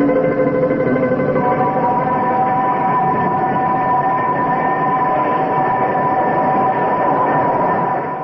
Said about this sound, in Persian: قطار از راه میرسد و همه بلند میشوند.